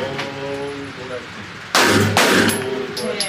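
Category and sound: impact, pistol shots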